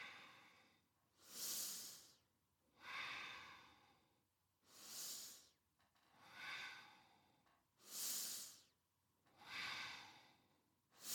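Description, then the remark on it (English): Slow, deep relaxation breathing, with about three full cycles of airy inhales alternating with softer, breathy exhales in a steady rhythm, and no talking, as a person arches forward breathing in and curves the spine breathing out. “Breathing in, breathing out, doing it at the pace that feels right for you.”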